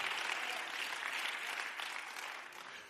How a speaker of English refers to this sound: Come on, somebody clap your hands and give God a shout of praise. Is this all right tonight, church?